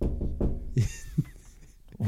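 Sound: banging on a wall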